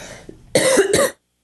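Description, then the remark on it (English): A person coughs twice in quick succession, fairly loud, harsh bursts that end abruptly into silence, with a bit of low background noise before. “And I'm going to cough.”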